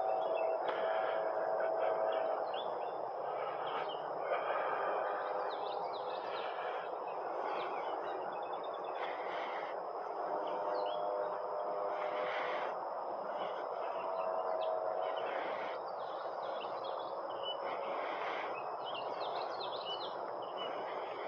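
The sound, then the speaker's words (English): A steady chorus of birds singing outdoors around 7:05 in the morning as the sun comes up, overlapping chirps and calls running continuously, slightly muffled, with no one speaking. “I hope you can hear these birds singing.”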